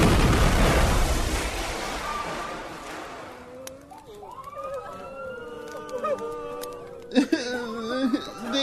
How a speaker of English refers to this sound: When suddenly, a night grenade is tossed into the melee, resulting in a massive explosion.